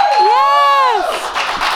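A loud, high whoop swells and falls over about a second, then gives way to a burst of crowd cheering and clapping that carries on steadily to the end.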